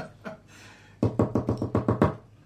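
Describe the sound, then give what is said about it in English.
A quick run of about seven firm knocks on a door, evenly spaced and fairly loud, following a brief quiet moment with no voices. “Right, I'll knock on the door.”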